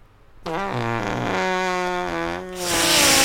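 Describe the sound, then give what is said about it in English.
A mouth-made fart noise: a loud, buzzy, low-pitched raspberry held steadily for about two seconds, then breaking into a rougher, hissing blast of breath at the end. “That was a good fart noise.”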